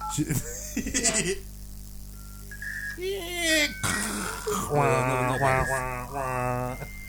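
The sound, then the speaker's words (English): A dial-up modem handshake while connecting to the internet: steady beeping tones, then warbling, screeching bursts and hissy static that shift rapidly over several seconds, moderately loud. “This bit when the demon comes through. I used to always think, like, is it connected?”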